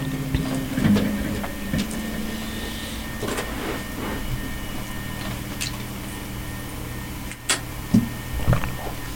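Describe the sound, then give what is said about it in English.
A plastic water bottle crinkles and creaks in short, uneven bursts as someone takes a sip of water, with a few sharper clicks and squishes over a steady low hum. No one speaks. “Weird water bottle sounds.”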